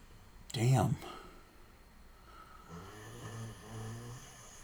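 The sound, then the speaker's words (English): A man snoring: one loud, rasping snort near the start, then a quieter, low rumbling drone that keeps going steadily to the end. “He snores just like a wife.”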